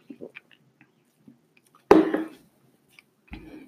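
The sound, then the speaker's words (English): A brief slurping sip about halfway through, preceded by faint mouth clicks and followed by a soft swallow-like rustle at the end. “Okay, but sip of drink.”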